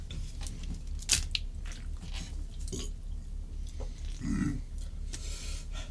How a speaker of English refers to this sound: I'm chewing up, just so you guys know. Like, I'm chewing super hard just to prove it.